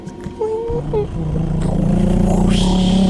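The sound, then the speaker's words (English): Ghost Rider's motorcycle engine idles in a sneak preview of Ghost Rider versus Lobo, with a steady, low rumble that grows slightly louder and fuller toward the end, while brief higher tones and murmured voice-like sounds drift over it. “Oh, wait, he's idling.”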